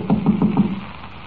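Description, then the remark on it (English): Four quick, evenly spaced knocks on a locked wooden stage door, firm, followed by a short stretch of quiet with no voices. “Door seems to be locked. Well, we'll knock.”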